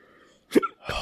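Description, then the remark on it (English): A single sharp hiccup, a short abrupt voiced gulp, followed moments later by a breathy burst of noise. No speech, just faint background hum before it. “You both got the hiccups.”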